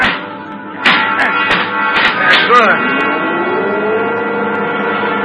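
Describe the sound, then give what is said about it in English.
A bent elevator control lever is kicked: a quick series of sharp metallic knocks and clanks, followed by a steady mechanical drone with a tone that slides upward and then levels off. “All right, kick the control lever.”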